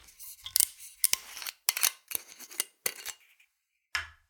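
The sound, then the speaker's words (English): A gold metal screw cap being cracked open on a brand-new bottle of spirit: a run of about eight sharp, crackly metallic clicks and rasps in uneven bursts, fairly loud, with no voices. “So, cracking this open. Brand new bottle, metal screw cap.”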